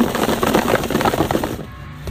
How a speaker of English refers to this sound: I don't know. The only way we can find out is to shake that box.